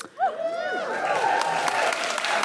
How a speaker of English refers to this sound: It's not come out yet, so the applause is probably previous